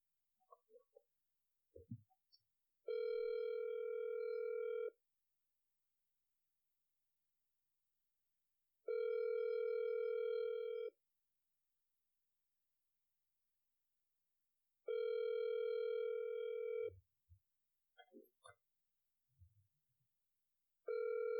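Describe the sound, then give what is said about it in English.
A phone's ringback tone purrs through the line in steady two-second bursts separated by longer pauses, repeating four times, with faint clicks and handling noises in between and no voices, as the unanswered call goes to voicemail. “Looks like it's only ringing. We're going to get a voicemail.”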